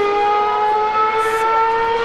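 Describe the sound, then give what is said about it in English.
Racing cars approach Stowe Corner from the right-hand side, heard from Stowe grandstand A, with a loud, sustained high-pitched engine whine, its steady harmonic tone wavering slightly in pitch, with no voices. “So the cars are approaching us from the right-hand side.”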